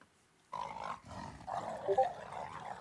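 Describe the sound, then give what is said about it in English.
A dog snarls loudly after a brief silence, a harsh rumbling growl that breaks off for a moment and then surges again, peaking near the end. “Do you want to play the sample that says dog snarl beat?”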